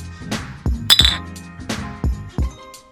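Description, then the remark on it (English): Glasses clink together in a toast, a bright ringing chime, surrounded by a few dull knocks and thuds of glassware being handled. No one speaks. “Cheers.”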